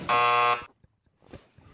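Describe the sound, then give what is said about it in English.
A loud, harsh game show buzzer blares for about half a second with a steady, raspy tone as a player buzzes in during a song-guessing quiz, then cuts off, followed by faint murmuring voices. “I don't know why I buzzed in.”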